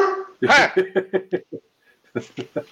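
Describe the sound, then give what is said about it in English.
A dog lets out a loud opening bark and then a rapid run of short, yappy barks. After a brief pause, a second quick burst follows, all fairly loud. “I wouldn't talk that way to your dog, mate, honestly.”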